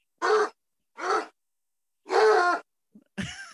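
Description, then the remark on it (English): A person imitates a big dog barking: three gruff, voiced woofs separated by pauses, the third drawn out longer, followed by a brief breathy sound and the start of another vocal burst. “Big dog barks.”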